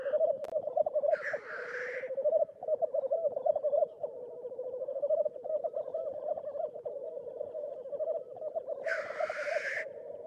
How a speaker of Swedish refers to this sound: Orrarna de låter mer som att de kvittrar och fräser när de spelar.